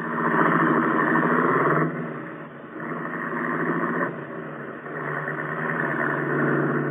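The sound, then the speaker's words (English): A car engine runs steadily, its drone dipping and swelling in three stretches as the car turns around, with no voices. “Turn the car around and let us go home.”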